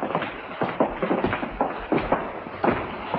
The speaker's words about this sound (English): Later at the hotel, Carl turns toward the sound of footsteps and stands. The colleagues enter.